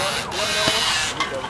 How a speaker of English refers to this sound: That is a drill you hear, taking the through axles out.